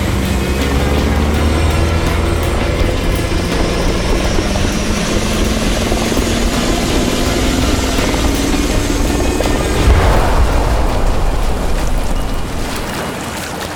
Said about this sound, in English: James, look, the helicopter! No. It's going down, it's gonna crash!